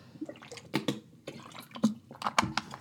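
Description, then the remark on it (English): Quiet sounds of someone drinking water: a handful of wet sips and gulps spaced irregularly over a few seconds, with no talking. “Excuse me, I'm just going to have some water and hydrate a bit better.”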